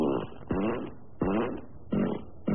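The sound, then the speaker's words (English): A run of four or five buzzy, wet-sounding fart sound effects, played on air from a studio sound-effect button, follows in quick succession, each a short blurt with a wobbling pitch, loud, with nobody talking. “Everything's off in here, and I was checking to see which fart was where the buzzer is, and he farted on the air.”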